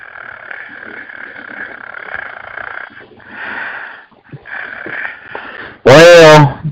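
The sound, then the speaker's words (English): Heavy, raspy wheezing breaths drawn out in long rasping phases with short gaps, ending in a sudden loud, high, wavering vocal cry. “He's breathing like a motherfucking. Sound like a goddamn vampire.”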